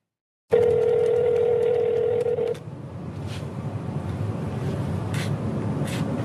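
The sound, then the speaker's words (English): A steady, fairly loud telephone dial tone hums for about two seconds at the start of a recorded phone call to a governor, presented as evidence by the Attorney General, then cuts off, leaving a noisy, hissing phone line with a few faint, brief clicks. “I'm about to play you actual evidence that was presented by the Attorney General, evidence of, well, you tell me, this is a politician's idea of an obscene phone call?”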